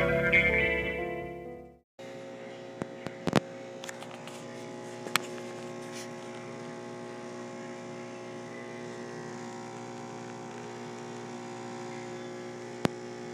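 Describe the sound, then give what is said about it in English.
A very high-tech espresso machine at a hotel runs with a steady, buzzing mechanical drone full of humming tones, broken by a few sharp clicks and ticks. It holds at an even level for over ten seconds. “Ladies and gentlemen, what you just heard was the sound of a very high-tech espresso machine found here at this particular hotel.”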